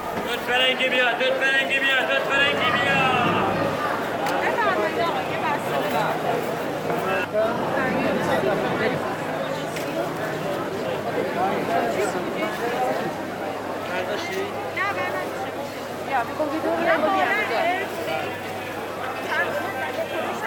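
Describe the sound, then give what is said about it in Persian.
A busy crowd under the roof of the Takyeh in Tajrish Bazaar, with many overlapping voices, some raised into loud, sing-song calls of fruit vendors selling off their goods cheaply above the steady chatter, filling the whole stretch at an even loudness. “تکیه‌ای که اگر محرم نباشه بوی سبزی و میوه تازه میده و صدای میوه فروشا رو زیر سقفش میشنوی که آتیش به مالشون زده.”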